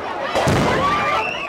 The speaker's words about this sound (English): And then the police fired tear gas into the crowd, and then things just got chaotic.